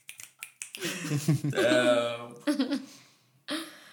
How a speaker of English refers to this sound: Finger snaps for that.